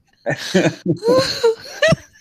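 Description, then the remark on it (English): A person lets out a quick run of about five harsh coughing bursts that blend into breathy, laugh-like vocal sounds, loud and uneven, with no clear speech. “I know I'm coughing.”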